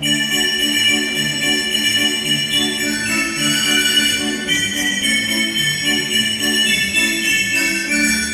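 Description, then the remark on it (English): Tuned sleigh bells, one of a whole room of percussion instruments built into a large instrument, ring in a steady, shimmering jingle that shifts between a few pitches, sustained and fairly loud throughout, with no voices. “Cathedral chimes, tuned sleigh bells,”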